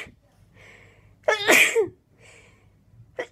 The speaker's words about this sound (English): She's sitting in bed and you can't see the top of her face. I don't know what brought that on. You can only really see her chin and her mouth. She's wearing a black dress with little white flowers on it. And she's just sneezing, man.